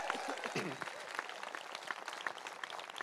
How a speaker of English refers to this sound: Give him a huge big round of applause.